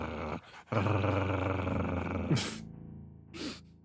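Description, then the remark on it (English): A person's voice imitates tiny dogs, with a sustained rough growl followed by a couple of short, breathy yips and snorts, fairly loud with no other talking. “I've just got tiny dogs on me. They're like...”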